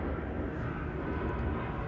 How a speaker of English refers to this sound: can we get an airplane? Freaking please.